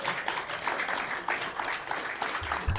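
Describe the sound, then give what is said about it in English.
A crowd applauds the winner of a space trivia question, a dense patter of many hands clapping at an even, moderate loudness throughout, with a couple of low thumps near the end and no talking. “Round of applause for that winner.”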